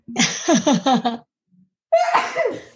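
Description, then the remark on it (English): A loud sneeze: a halting, breathy buildup of short gasps, a brief pause, then a sudden sharp burst of air trailing off. “Whatever you do, hold on, I have to sneeze.”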